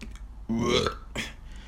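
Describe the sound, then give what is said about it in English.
A single loud, throaty burp rumbles out for about half a second, followed by a brief breathy exhale; no one speaks. “Plushie grabs Haley and starts to swallow her whole. Burped out her wig.”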